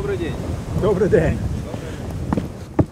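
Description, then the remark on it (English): Blustery wind rumbles steadily outdoors at a frontline defensive position with trenches, with a low, rushing roar, while faint muffled voices come and go beneath it and a sharp knock sounds near the end. “The wind gusts and a soldier beckons us to join him in a nearby trench.”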